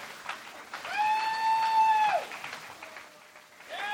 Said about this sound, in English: Clap your hands. All the way to the stage. Clap your hands all the way to the stage for these delightful people that are here for your enjoyment.